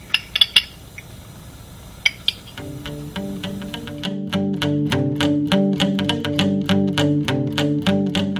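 Handcuffs click and clink during an arrest as a phone is turned off, in a few sharp metallic bursts, a quick cluster followed by a couple more a moment later, before rhythmic music comes in and carries on.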